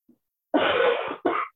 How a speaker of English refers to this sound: Excuse me, you know why I'm home. You need to cover that cough. We don't want to get COVID.